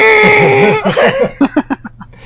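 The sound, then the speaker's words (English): A rubber chicken squeals in one long, strained, buzzing honk, then lets out a quick run of six or seven short squeaks that fade away. No one speaks over it. “All of your lines in Irrelevations with my rubber chicken.”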